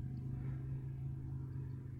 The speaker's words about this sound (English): What is that? Is that a fucking motorbike?